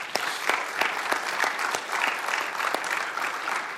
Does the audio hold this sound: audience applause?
yes